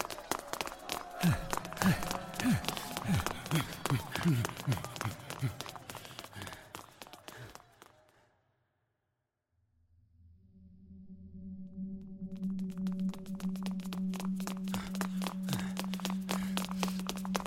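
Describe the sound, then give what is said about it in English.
Rapid, echoing footsteps pound up the stairs of a tower for several seconds, stop briefly into silence, then resume as quicker taps over a steady low hum. “At last, and not a moment too soon, I thought I heard footsteps echoing up behind us.”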